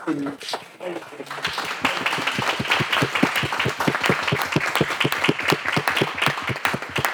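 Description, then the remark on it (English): A brief voice gives way to steady audience applause, a dense run of sharp claps with a strong regular beat that keeps a fairly even, lively loudness for several seconds. “I think a round of applause for the...”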